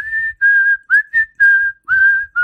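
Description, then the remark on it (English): Someone whistles a tune from a film: a run of clear, sustained notes separated by brief pauses, with a few quick sliding notes between the longer ones. No speech. “What is it that you whistle, by the way, …? It's from Kill Bill.”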